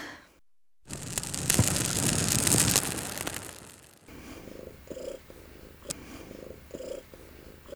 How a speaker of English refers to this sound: And River is the nice ASMR purring you're hearing in the background. Honestly, I love it so much. Big fan.